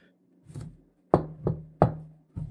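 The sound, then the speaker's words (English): Knocking on a door, fairly loud: a soft first rap, then four firm knocks in an uneven rhythm, with no voices. “This time, when she knocked, Snow White stuck her head out the window.”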